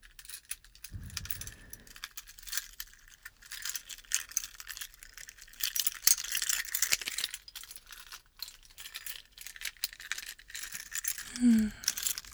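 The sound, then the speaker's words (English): Keys jangle and clink in repeated bursts for several seconds as someone gets the keys to unlock a bicycle, a bright metallic rattling, with a brief low thump near the start and a short tone near the end. “The first thing to do is to unlock my bicycle. So I'm going to go and get my keys.”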